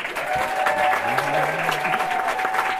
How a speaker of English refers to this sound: Please applaud while I do math.